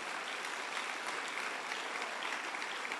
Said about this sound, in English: So from people's giving and what we have saved, we have raised 260 million. Clap unto the Lord.